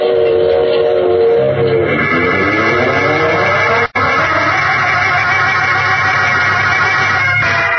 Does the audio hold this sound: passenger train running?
yes